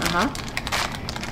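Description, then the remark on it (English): Crackly rustling of plastic packaging of chocolate-dipped ika candy from Big Island Candies being handled and pulled open, a rapid series of crinkles, with a brief voice sounding at the start. “Uh-oh, can you open it? Oh, yeah. Oh, whew. We're going to go and get some scissors.”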